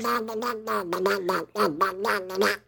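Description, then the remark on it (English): A person does a Donald Duck impression, babbling in a raspy, squawking quack-like voice, a steady stream of garbled syllables with one brief pause midway. “how much do you like my Donald Duck on a 1 to 10?”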